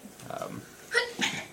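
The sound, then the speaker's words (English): A sudden sneeze: two sharp, hissy bursts in quick succession, preceded by a brief low, breathy murmur, moderately loud against an otherwise quiet background. “Bless you.”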